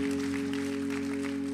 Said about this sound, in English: So shout out to the women's basketball team. Come on, clap for the UCLA girls.